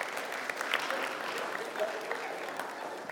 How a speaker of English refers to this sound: Come on, give him a little clap. There you go.